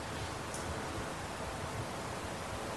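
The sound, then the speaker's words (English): Steady rain pours without pause, a dense, even hiss spread across low rumble and bright high patter, with no voices and no change in loudness. “It's just rain, whatever kind of associations you added or didn't.”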